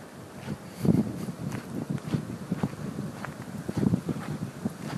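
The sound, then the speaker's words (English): Wind buffets the microphone in rough, uneven gusts, a low rumbling roar that swells and eases over a few seconds, with faint crunching steps underneath and no one speaking. “Look at that, look, the wind's picking up as if somebody's saying, now is not the time to be talking about this.”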